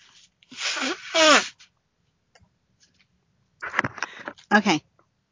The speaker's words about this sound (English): Let me blow my nose. Hold on.